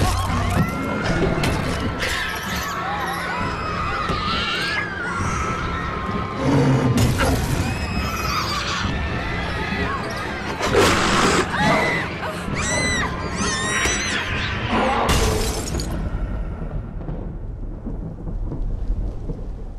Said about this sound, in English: It was at this moment, a gorilla tried to break the glass of the cage.